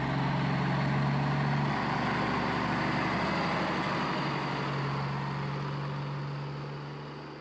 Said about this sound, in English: I cracked the window so I could hear Montana outside, the oceanic sounds of trucks going by in grandma gear.